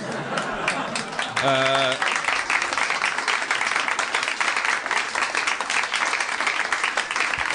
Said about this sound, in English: It's weird. It's weird. It's weird. The round of applause is weird. I did not. You didn't do anything wrong. I'm saying it sounds weird. It's all weird.